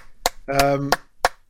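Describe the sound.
About five sharp, sparse hand claps at a slow, steady pace, a token round of applause welcoming someone back on a show, with a short voiced sound from someone between the second and third claps.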